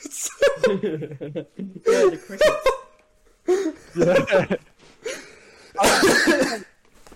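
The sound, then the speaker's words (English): Several short, self-conscious coughs break the quiet in bursts, mixed with a bit of throat clearing and faint chuckling, like an awkward pause after a joke falls flat. “Who keeps coughing every time something happens?”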